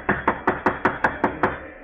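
Loud, rapid knocking on a door, about seven sharp raps in a quick, steady rhythm, close by with no voices over it.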